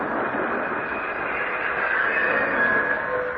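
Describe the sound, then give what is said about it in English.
A steady, loud rumble of a train rolling along the rails as it pulls into a small-town station with an old depot at the end of a long trip, with faint metallic squeals and whines rising briefly over the continuous clatter, no voices present. “But finally, we pulled into the station.”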